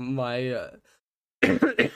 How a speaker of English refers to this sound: Sorry, guys, I've been coughing this entire recording